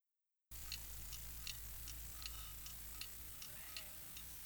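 clock ticking

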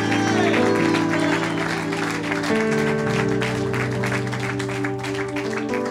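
audience clapping

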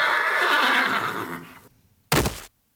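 horse neighing and whinnying

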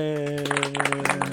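half-hearted clapping

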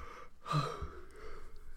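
yawn

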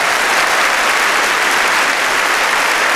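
crowd applauding and cheering

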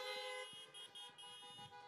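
car horns honking

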